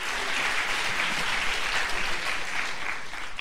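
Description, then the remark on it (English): A seated audience gives the Lord a hand clap after a prayer, a steady, sustained round of applause, a dense crackling wash of many hands at even loudness with no voices standing out. “Come on, just give the Lord a good hand clap as you're seated.”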